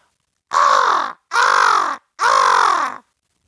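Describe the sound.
A person imitates a crow with their mouth: three loud, harsh caws in a steady rhythm, each lasting about half a second with short pauses between, no talking.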